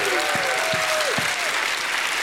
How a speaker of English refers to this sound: Somebody give him a hand clap and a shout of praise.